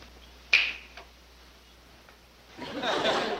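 A single sharp finger snap cracks out in a hypnotism scene from the 1960s TV series Gilligan's Island, followed by a fainter click a moment later, then a brief stretch of quiet before a soft burst of muffled chuckling and rustle.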